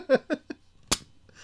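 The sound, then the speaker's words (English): A Shiner beer bottle cracks open with one crisp pop and a short fizzy hiss, just after three quick bursts of laughter. “That's that Shiner cheer. Yeah, that was a Christmas open.”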